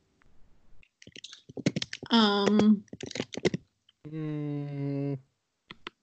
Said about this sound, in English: Are you typing a paper?